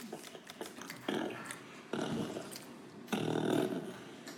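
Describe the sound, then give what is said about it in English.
A fart sound: three loud, raspy, sputtering blasts, each starting abruptly and separated by brief pauses, the last one the longest and strongest. “Okay. Fart.”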